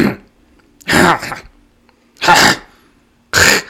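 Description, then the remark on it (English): A person imitates a large man's aggressive throat clearing: three loud, harsh, rasping bursts, each lasting about half a second, spaced roughly a second apart with quiet gaps between. “Like clearing his throat. Yeah. But even aggressively.”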